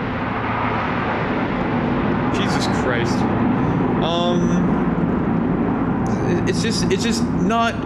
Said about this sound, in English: Can you hear that plane?